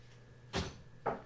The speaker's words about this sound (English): Why you gotta kick the door open?